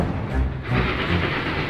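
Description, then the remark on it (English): A steady rumbling clatter of a train rolling along the tracks, continuous and fairly loud throughout, with a broad hissing wash over low thumping rhythm and no voices. “Those two must be hiding somewhere on this train.”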